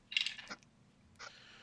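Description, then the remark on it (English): Damage dice clatter across a hard tabletop in a quick burst of rattling clicks during a tabletop role-playing game, rolled twice after a natural 20, then a second, softer rattle follows a moment later. Crisp, with no voices. “Okay, roll your damage dice twice.”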